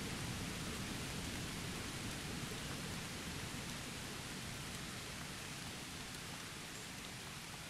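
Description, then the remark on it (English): Heavy freezing rain lashes down in strong, biting wind on a mountain route up to the Wells of Dee, making a dense, unbroken hiss with a low rumbling roar underneath. It stays loud throughout, with no voices. “We follow one of her routes up to the Wells of Dee, navigating through biting winds and freezing rain.”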